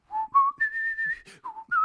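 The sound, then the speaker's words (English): A man whistles a short melody again from the centre of a pillar structure, several clear, pure notes stepping up and down with one long held tone in the middle, fairly loud with no one talking. “Henadad walks to the center of the pillar thing, and everybody's really intent on you guys talking, and he whistles the notes again”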